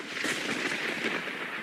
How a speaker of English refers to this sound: Let's roll a bolt of lightning in honor of God.